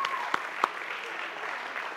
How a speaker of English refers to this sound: All right, give our drama team a good clap here today.